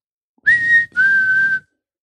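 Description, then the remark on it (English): Two sustained whistled notes coming from a bridge on a foggy road, the first slightly higher and shorter, the second steady and longer, clear and fairly loud against silence with no talking. “decides he's going to copy it to try and mess with the dog. So he whistles and the dog looks back at him.”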